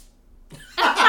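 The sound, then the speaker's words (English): A single sneeze: a brief intake of breath, then a sudden loud, breathy burst lasting about a third of a second. No talking. “Bless you.”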